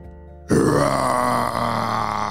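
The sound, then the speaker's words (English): After a brief hush, a huge dinosaur roar bursts in, a loud, deep, rumbling growl that holds steady for about two seconds with no voices. “They just needed to walk on through, but I think there was just a big misunderstanding with that giant dinosaur.”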